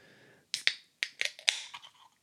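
A Liquid Death severed lime flavored sparkling water can is cracked open: a quick series of sharp, bright metallic clicks and pops, with a short fizzy hiss trailing off afterward. No one speaks.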